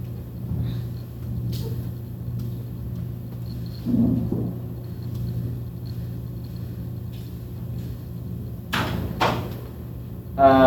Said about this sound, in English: Can somebody close the door?